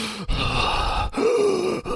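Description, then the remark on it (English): A person mimics the ragged, gasping breaths of a badly wounded man starting to breathe again, a few harsh inhalations broken by brief pauses, the last one carrying a strained, groaning voice. “You see his breath just go...”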